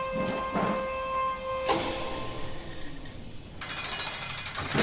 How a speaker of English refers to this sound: Someone's coming down the elevator.